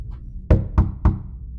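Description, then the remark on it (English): Three evenly spaced light knocks on a door at night, each a short, soft thud with a bit of ring. “That night, Callie is pulled from a dream by the sound of three light knocks on her door.”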